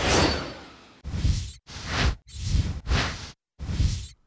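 A run of six metallic whoosh sound effects: one longer, fading sweep followed by five short, punchy swishes, each cut off by a brief silence. Loud, with no voices.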